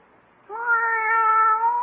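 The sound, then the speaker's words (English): A single drawn-out cat meow, steady and fairly loud, lasting over a second after a brief quiet start, with no talking over it. “Oh, go away, cat.”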